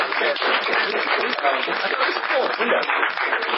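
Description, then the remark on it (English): A crowd claps steadily for a few seconds, a dense, continuous patter of many hands, with some voices mixed in beneath the applause, giving a round of applause for the person working the laptop and writing. “Hey, yo, can we offer a round of applause for the cool laptop and writing person?”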